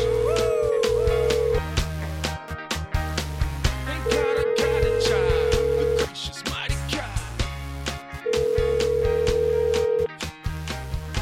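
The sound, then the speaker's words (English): A telephone rings in three long, steady tonal bursts spaced a couple of seconds apart, fairly loud, layered over busy background music with a thumping bass line. “I mean, was you going to answer the phone, bro, or not?”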